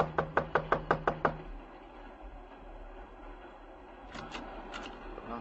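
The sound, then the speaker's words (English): Seven quick, evenly spaced knocks rap sharply on a door, then stop, leaving a low steady rumble with a couple of softer taps later on. “Just knock on the door.”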